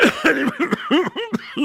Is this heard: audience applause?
no